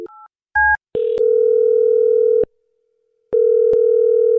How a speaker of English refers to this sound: All right, well, I'm going to dial her phone number right now and see if we can figure out why she's not getting back to you, okay?